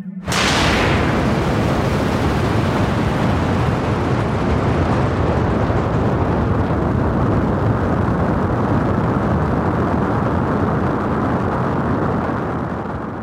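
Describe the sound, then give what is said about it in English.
A rocket ship blasts off from the planet Colorwonderful to fly home to Earth, with a sudden burst, then a loud, steady roar of deep rumbling thrust that holds for over ten seconds, its hissing top end slowly fading. No voices are heard. “It's time for me to fly home in my rocket ship now to go back to Earth.”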